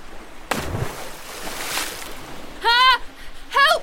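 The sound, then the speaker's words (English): A heavy body-sized splash as a woman is kicked backwards into marsh water, then gurgling water lingers. Moments later a voice cries out twice in short, strained shouts. “As soon as she hit the water, the silvery light faded and her consciousness returned to her.”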